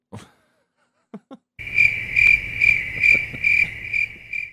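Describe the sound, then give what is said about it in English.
A few faint clicks, then a chorus of crickets, played back, starts up, chirping in a steady, evenly pulsing trill that stays loud for several seconds. “Why is it taking you so long to play crickets?”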